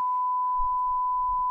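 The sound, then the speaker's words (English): A steady, high-pitched censor bleep holds unbroken for about a second and a half, masking a spoken word, with faint low murmuring underneath in the second half. “Beep it out, but it is funny.”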